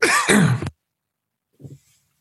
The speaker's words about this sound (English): Sorry, I hit the mute button so I could cough.